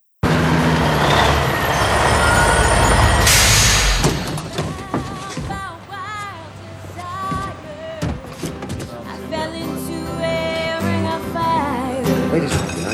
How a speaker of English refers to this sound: Okay, so in present day, we see Ludlow's truck pull in.